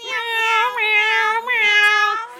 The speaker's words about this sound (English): And it's a big old cat.